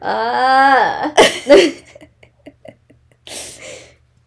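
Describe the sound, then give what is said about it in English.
A long, loud, resonant burp whose pitch drops as it ends, followed by a couple of short, rough throaty bursts and a breathy huff. No one speaks. “I also have burps.”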